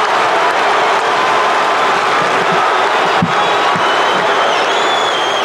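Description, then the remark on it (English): A roaring basketball arena crowd cheers loudly and continuously for Lakers player Michael Cooper's 18-foot shot with 7 seconds left. It is a dense wall of voices that never lets up across the whole stretch, with a few sharper shouts and thumps poking through. “But listen to this crowd on Cooper's heroics.”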